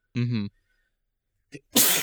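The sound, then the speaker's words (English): One loud sneeze: a voiced, breathy build-up, a brief pause and catch, then a sharp, explosive burst of air. “I had to sneeze.”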